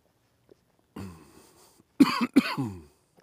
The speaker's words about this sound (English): And then, excuse my cough here, God.